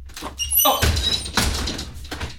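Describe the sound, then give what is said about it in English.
A door is opened: a brief high squeak of the hinge, then a loud rush of rattling, scraping noise that tapers off. No one speaks. “There's somebody at the door. Go check grab that real quick.”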